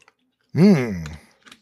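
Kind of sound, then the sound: food or drink, drinking water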